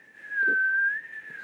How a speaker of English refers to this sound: Like, when I whistle, it's just whatever noise comes out of my mouth. And then I can kind of make it go higher or lower, but, like, I couldn't do it to a tune, if that makes sense.